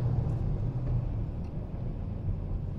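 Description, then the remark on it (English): A stick-shift car engine hums low, its pitch lifting and settling slightly as it revs through a downshift into a tight U-turn on a test drive, a steady rumble with no talking. “Shifting down. The U-turn.”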